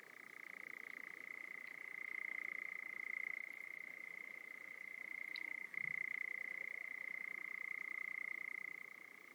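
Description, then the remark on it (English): A male nightjar's continuous churring song, a steady mechanical trill of 28 to 42 notes per second that runs without a break from start to finish, modulating as he turns his head and breathes, clear with no other sounds or voices. “They can breathe at the same time as they chirr.”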